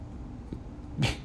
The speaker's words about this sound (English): That dog is loud.